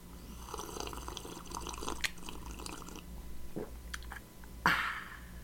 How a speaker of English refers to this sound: I'll get some hot beverage inside my mouth.